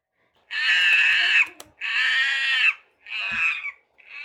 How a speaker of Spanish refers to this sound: Los monos son ruidosos, muy ruidosos. Pueden escuchar el sonido atronador de los monos desde aproximadamente una milla de distancia.